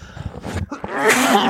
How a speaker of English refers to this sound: What was that? It was me sneezing into the microphone. I tried to mitigate that and I completely failed.